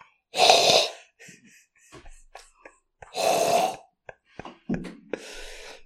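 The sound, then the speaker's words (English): A voice imitates helicopter noises as a Britain's Got Talent act, with two loud, breathy whooshing bursts, separated by mouth clicks and small puffs, then a softer, hissing stretch at the end. “Learning helicopter noises.”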